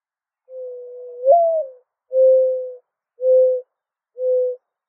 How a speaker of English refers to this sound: Let's listen to these fucking birds.